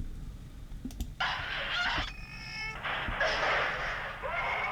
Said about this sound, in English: You think that's a camera clicking? Huh? Kind of sounds like a camera, but it, you know, like a. I don't know what that is. I mean, it wouldn't be a camera sound, but it.